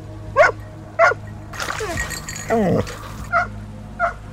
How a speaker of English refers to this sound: Barking, barking at the water.